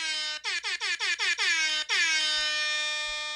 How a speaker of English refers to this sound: Oh wait, I'm sorry, I forgot the air horns for when people say bozo, not for when they go to the bone zone. My bad.